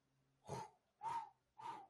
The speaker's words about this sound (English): You guys are just going to have to deal with me breathing on the mic.